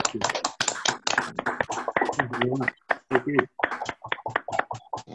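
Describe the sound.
A round of applause: quick, sharp hand claps in an uneven, scattered rhythm, moderately loud, with a few voices speaking partway through as the clapping thins out.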